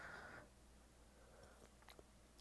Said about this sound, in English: My tea is about ready. Hope your tea is ready too. And let me just sip a little bit.